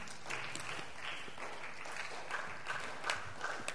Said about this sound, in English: Just put your hands together for the living God. This your clapping is very weak.